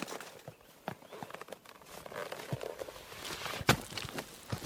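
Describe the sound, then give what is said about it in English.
Horse hooves clip-clop at an uneven walking pace, the hollow knocks moderately loud over a soft, rustling outdoor background, with no one talking. “We should leave the horse in case a swift retreat is required.”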